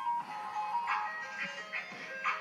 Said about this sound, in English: They're all dancing. They're all dancing to the ice cream truck.